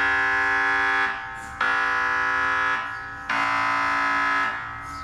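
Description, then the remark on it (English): Loud noise from a brain scanner measuring a person's head: a harsh, buzzing electronic drone with a rich harmonic tone, repeating in three long bursts that each fade slightly before abruptly restarting, with no voices. “Now, as you can see, or should I say, as you can hear, the problem about measuring your head inside a machine that sounds like an oversized inkjet printer on steroids is that it's very noisy.”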